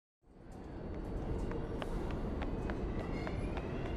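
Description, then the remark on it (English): A deep, steady rumble fills a subway station as a train runs, with sharp footsteps slapping quickly over the noise as a detective pursues a suspect, and a faint metallic squeal rising near the end. “Suspect has entered a subway station.”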